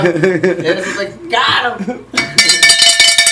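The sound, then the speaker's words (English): A voice talks for the first couple of seconds, then a bright, metallic bell rings out loudly, its high shimmering tones sustaining to the end. “Ring the bell for your boy Walker.”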